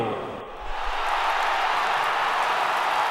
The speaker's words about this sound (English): Thank you, thank you. You know, your applause as always bring a joy to my heart.